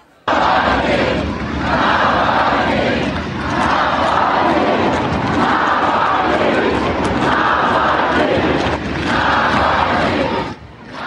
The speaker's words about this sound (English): But mostly, they just chanted Navalny's name over and over, as in this footage posted by Navalny allies from a rooftop overlooking the crowds.